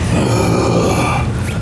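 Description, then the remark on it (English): A monstrous roar from a 300-foot-tall giant robot dragon: one sustained, loud blast with a deep rumbling growl underneath and a harsh, raspy hiss spreading up high, tapering slightly at the end. No one speaks. “It lets loose a blood-curdling roar that seems to go through the entire spectrum of sound.”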